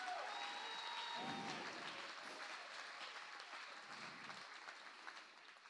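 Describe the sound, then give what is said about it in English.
A crowd claps continuously for several seconds in praise to God during a church sermon, a dense, even wash of many hands with faint whistles mixed in, tapering off slightly at the end. “Somebody clap your hands in praise to this God.”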